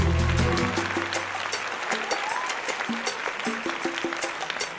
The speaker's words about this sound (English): A round of applause, please, for the author,